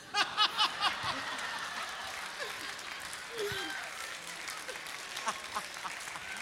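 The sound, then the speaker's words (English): A crowd at a service claps and laughs together, a burst of applause at the start fading into scattered chuckles and murmurs that carry on through, moderately loud. “I love the crowd engagement much better than first service.”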